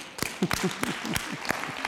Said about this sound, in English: I love it when you beat me to the clapping. That's good. You're enthusiastic.